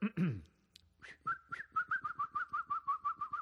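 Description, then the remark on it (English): A person whistles a rapid, warbling bird-like call, a steady pitched tone broken into quick repeated pulses, fairly loud after a brief opening sound. “There's the bird.”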